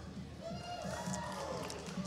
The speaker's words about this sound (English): But one that I do want to talk about is the rise and rise of Julia Fox, okay? Can we give a cheer if we like Julia?